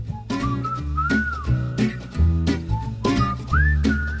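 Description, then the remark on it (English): A bright whistled melody glides and slides over an upbeat instrumental backing with steady percussive beats and a full bass line. A short, jaunty bumper music bed with no voices. “Wait, stop the bumper music.”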